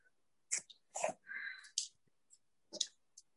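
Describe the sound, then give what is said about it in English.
A few short, breathy hissing exhalations pushed through a tightened throat in yoga ocean breath, one stretching into a raspy, faintly whistling tone, with small clicks and mouth noises between them and no speech. “I forget what it's called, but a yoga breathing where you kind of constrict your throat a bit.”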